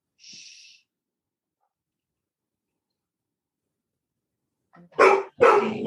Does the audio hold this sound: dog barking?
yes